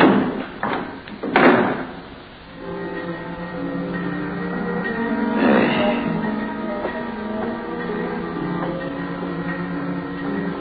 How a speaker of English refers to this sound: And unhurriedly, he pushed the sliding slab into the compartment and closed the door marked 12. And turned the knob that held it shut.